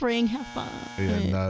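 A short, loud buzzer sound effect played as a light buzz on the radio show The Rendezvous, sounding as two back-to-back droning buzzes right after a brief vocal sound.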